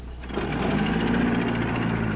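An old car engine runs with a steady, rapid mechanical chatter and a low rumble underneath, holding an even, fairly loud level after a brief quiet start. No one speaks.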